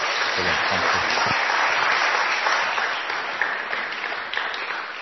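An audience applauds steadily, a dense wash of clapping that holds loud for several seconds and then gradually tapers a little toward the end, with a brief voice at the start.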